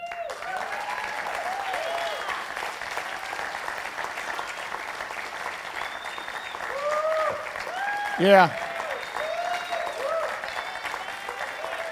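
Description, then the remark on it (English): An audience in a church service applauds the C3 kids leaders steadily for about twelve seconds, a dense wash of clapping with a few voices rising above it and a brief louder cheer near the end. “Take the applause, guys.”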